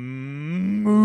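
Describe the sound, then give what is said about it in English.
A single drawn-out moo, voiced by a person imitating a cow saying 'move', about a second long, starting low and swelling louder and slightly higher toward the end. Clear, with no other sounds. “And so now we're starting, the mushrooms are kicking in, and the cows are looking at us, and they're going, move.”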